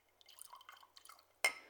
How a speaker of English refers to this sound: This is Grangestone 21-year-old Highland Single Malt Scotch Whiskey. And let me open that up. Pour a little bit in the glass.